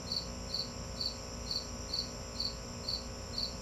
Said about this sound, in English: And I think I'm tired of talking and the stupid air conditioner kicked in and now there's a cricket yelling at me.